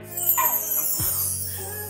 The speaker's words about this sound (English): What was that? You hiding something? What's this? No, wait! What is a puppy doing in your room?